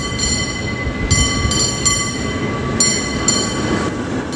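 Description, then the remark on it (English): A San Francisco cable car rumbles steadily up California Street along its rail line, a dense low roar threaded with a thin metallic whine, broken by a few brief bright clanks and squeals at irregular intervals. No one speaks. “Back on Big 19, that cable car taking us up California Street,”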